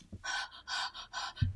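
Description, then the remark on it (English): Heavy, rapid breathing right up against the microphone as a woman breathes on a spider plant: a quick run of breathy, hissing pants in steady rhythm, with a soft low thump near the end. “Yes, she is literally breathing on it.”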